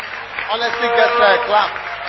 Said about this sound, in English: Clap for yourself. At least it's honest. Honesty gets her at least a clap.